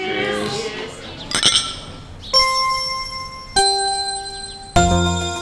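Cocktail glasses holding Death in the Afternoon cocktails clink together in an evening toast, about four bright clinks a second or so apart, each ringing on with a clear tone before fading, after a brief murmur of voices.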